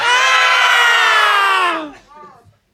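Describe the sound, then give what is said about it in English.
People imitate screaming: a loud, sustained scream from a couple of voices holds steady for nearly two seconds, then slides downward and breaks off into a short, quieter wavering yell. “You want to, if you want to do some screaming sounds”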